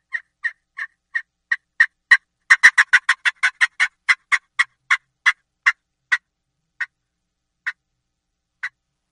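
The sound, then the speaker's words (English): A friction call imitates a turkey's fly-down cackle: a run of sharp, clucking notes that starts slowly, speeds into a rapid burst, then trails off into a few spaced clucks, loud. “So, for instance, I'm going to do a fly down cackle on a friction call, just to show you, I'm going to do the same thing I did with the mouth call, but I'm going to do the same rhythm, but I'm going to do this with a friction call.”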